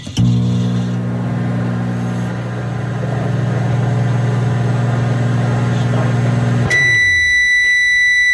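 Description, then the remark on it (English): A microwave oven hums steadily with a low droning whir for several seconds, then stops and gives a series of high, clear beeps at the end. “That's a microwave.”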